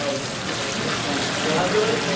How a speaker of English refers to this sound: And we're going to pour the brine on top of the cucumbers. See, it's clear now.